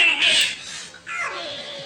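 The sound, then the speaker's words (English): A parrot mimics human sex noises: two loud, shrill, moaning vocal cries in quick succession, separated by a brief dip, with a strained, high, squeaky quality and no talking. “But yeah, so porn parrots exist.”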